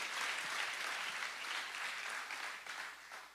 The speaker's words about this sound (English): You can give him a round of applause.